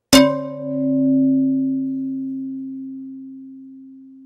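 One sharp knock on a stiff carbon-fibre cap, a test piece for helmets shipped by Fiberforge, followed by a clear bell-like ringing tone that hangs on and slowly fades over about four seconds, with no talking.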